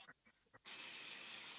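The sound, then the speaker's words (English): After a few soft, brief noises, running water abruptly starts and carries on as a steady, fairly loud hiss to the end, with no talking. “There's running water in the background.”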